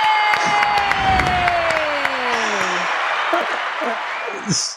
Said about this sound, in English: I can't tell you how often it's that applause. It makes me so happy coming into this interview every single time.